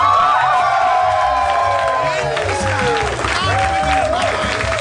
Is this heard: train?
no